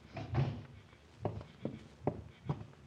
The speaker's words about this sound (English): shut the door. Keep the rest of the family out of here.